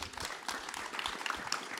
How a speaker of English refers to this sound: Thank you very much for joining us. Big round of applause for our panel.